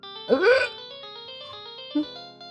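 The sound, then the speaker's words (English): A phone rings with a steady electronic ringtone that holds sustained tones throughout, while a brief voice-like burst rises over it early on and a short blip follows near the end. “Beck, you get a phone call.”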